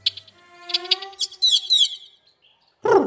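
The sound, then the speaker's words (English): A Carib grackle eating dog food among other birds calls with a run of squeaky, whistled notes and buzzy chirps, a brief pause, then one loud harsh burst at the end. No one speaks. “This carob grackle is giving the other birds a tutorial on how to eat dog food.”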